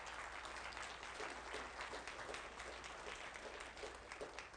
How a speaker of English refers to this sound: I want to thank you teachers that teach those Sunday school classes. Some of you for 20, 30, 40 years. I want to thank you today publicly. Yeah, that's worth a round of applause.